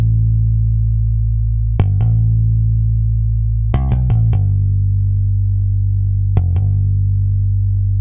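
Music with a deep, sustained bass tone droning throughout, punctuated by sharp percussive hits that come in small clusters of two to four, loud; apart from a guitar, all instruments are entirely synthesized, including a bass guitar sound.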